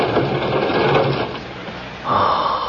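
A heavy drawer rolls out with a continuous, rough metallic scraping that lasts nearly three seconds, shifting to a higher, brighter grinding tone near the end. No voices.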